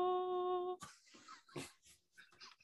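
A female dog lets out a steady, high-pitched whine lasting under a second, followed by a few breathy, snuffling bursts, all fairly quiet.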